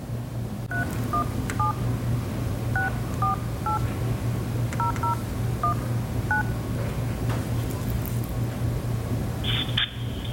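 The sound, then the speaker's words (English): About a dozen touch-tone keypad beeps dial a phone number in uneven bursts over a steady low hum, then a short pause and a higher electronic tone as the call is rejected. “let's see if Miss Raven's still at the phone number and still answering”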